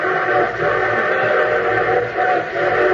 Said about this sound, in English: But a train whistle sounds closer. Well, of course it sounds closer. It's going to pass within a mile and a half of it.